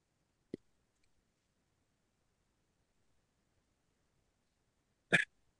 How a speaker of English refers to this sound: And he did, excuse me for a second, I've got to blow my nose.